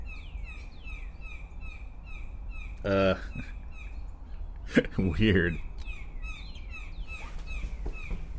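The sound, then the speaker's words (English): Repeated high chirping calls from an unidentified bird fill an outdoor scene on an oddly warm morning, with a couple of louder, harsh squawk-like calls breaking through midway and a voice briefly speaking over the ambient birdsong. “I don't recognize that bird call.”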